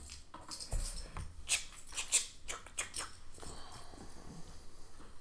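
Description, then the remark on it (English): Keys belonging to the speaker's mother jingle and clink in a few light metallic bursts, jostled intermittently and fairly quietly, with soft handling rustle between the jangles and no one talking. “Yeah, that's my mom's keys, so don't judge me.”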